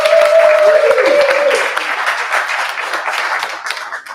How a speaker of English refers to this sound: So give a round of applause for the Sparrow, please.